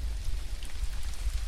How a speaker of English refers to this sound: Oh, no. That sounds like static, but it's rain.